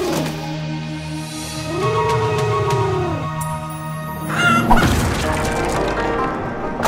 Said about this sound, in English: Hey, Reggie, the door's jammed. I'm going to let him come over here and karate kick it open. No, Reggie, take down this door, you karate old bird.